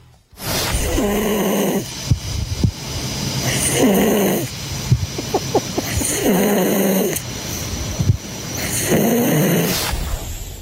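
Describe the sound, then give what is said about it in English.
Loud snoring repeats in a steady rhythm, about four rasping breaths each lasting a second or so, separated by short pauses with faint clicks and rustles. “That's me snoring, is it?”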